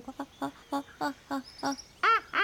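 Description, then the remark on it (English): A voice imitates an elephant as an agreed signal sound, with a quick, even series of short nasal honks, then finishes with two louder, higher-pitched trumpeting blasts. “That was the worst elephant impression ever, but I can definitely copy it.”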